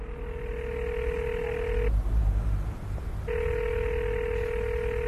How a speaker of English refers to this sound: Its windows were tinted, and Honorable Makemba was seated at the back, making a call on his mobile phone.